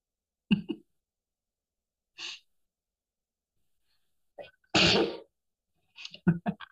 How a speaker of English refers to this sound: I'm going to sneeze.